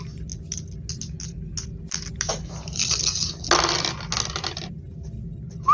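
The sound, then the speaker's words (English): Dice rattle and clatter across a table, with a steady run of small clicks that swells into a louder burst of tumbling before settling, over a low background hum. “I need some more dice here.”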